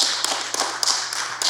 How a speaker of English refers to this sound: So right now, I just want to give you a round of applause. So wherever you are, to give our doctors, our nurses, our healthcare professionals, all the individuals that work in the hospital.